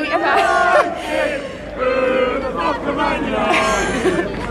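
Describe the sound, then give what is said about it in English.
A football crowd chants loudly outside a stadium after a match, fans not wanting to go home, many voices joining in sustained, sung phrases that rise and fall in waves, with shouting and babble between the chants. “I'm outside the crowd. No one wants to go home.”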